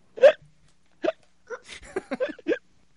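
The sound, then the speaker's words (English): A string of sharp, fairly loud hiccups, arriving in quick irregular bursts, one large hic followed by several smaller gasping ones over a few seconds. “Are hiccups a sign of a more deadly disease?”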